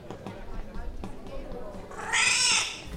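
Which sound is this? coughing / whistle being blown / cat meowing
cat meowing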